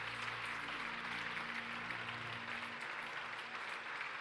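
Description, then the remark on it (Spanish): Sustained applause from a large crowd clapping to thank God, a dense wash of clapping that fills the whole few seconds at steady loudness, with a low hum beneath it that fades partway through. “Si ese eres tú, dale ese aplauso fuerte a Él en esta tarde.”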